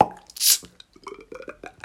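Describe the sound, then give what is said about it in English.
A man imitates with his mouth a glass bottle being cracked open and poured: a quick pop and a bright fizzy hiss, followed by a run of gurgling, glugging mouth sounds, moderately loud. “cracked open a glass and poured it into something, that was him doing sound effects.”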